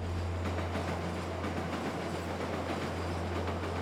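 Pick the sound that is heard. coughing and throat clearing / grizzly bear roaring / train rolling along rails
train rolling along rails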